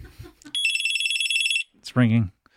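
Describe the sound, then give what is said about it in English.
After a phone number is dialled, a telephone rings once on the line, a steady high electronic tone lasting about a second, followed by a brief burst of a voice. “Let me press the last number. Okay, it's ringing.”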